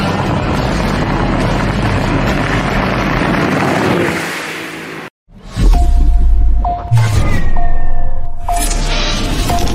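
A bass boat, a Basscat Puma STS with a 250 or 300 horsepower engine and a 20-foot-7-inch hull on a 96-inch wide body, roars loudly and steadily amid rushing wind and water, then cuts off abruptly before a series of whooshes and humming engine tones swell back in.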